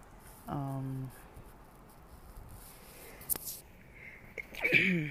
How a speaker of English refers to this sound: excuse me, I'm sneezing.